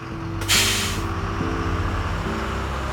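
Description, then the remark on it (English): A prison bus engine idles with a steady low rumble as the bus carts a 30-year-old convict away, broken by one sharp, loud hiss of air brakes releasing near the start, fading over about half a second. “No one waved goodbye as a prison bus carted the 30-year-old away.”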